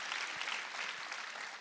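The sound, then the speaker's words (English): A church audience claps together in a steady, dense wash of applause, the many overlapping hand claps blending into a bright, crackling roar that holds evenly throughout with no voices. “Clap with this lady that began to clap because she gets it.”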